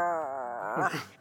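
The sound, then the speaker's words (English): A person makes a single drawn-out, wavering growl like a wolf, fairly loud, breaking into a rougher, choppier rasp before trailing off. “Give a little growl.”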